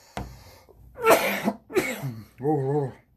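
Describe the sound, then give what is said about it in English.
Two harsh, raspy coughs burst out in quick succession after the person smokes weed from a bowl, followed by a short voiced groan as the person catches their breath. “I'm over here still coughing.”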